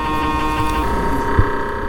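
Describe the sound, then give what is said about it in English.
A steady, droning hum with layered tonal bands holds throughout, fairly loud, with a brief low thump near the end; someone imitates the constant hum of an MRI brain scanner. “There's, like, a constant, like, you know, kind of, like, hum thing.”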